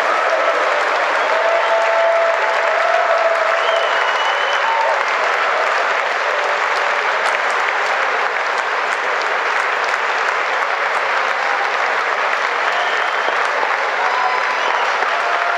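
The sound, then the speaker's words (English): Sustained applause from a large crowd after Donald Trump's State of the Union speech, with Nancy Pelosi standing and clapping, a dense, steady wash of clapping that holds at an even, loud level for about fifteen seconds, with faint murmurs of voices mixed underneath. “Nancy Pelosi, after Trump wraps up his State of the Union speech, stands up, claps, and basically rips up copies of his of Trump's speech.”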